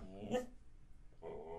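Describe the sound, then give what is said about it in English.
A dog growls in two rough, rumbling bursts, the first with a sharp yelping peak and the second after a short pause, with no one talking over it. “Shut up, dog.”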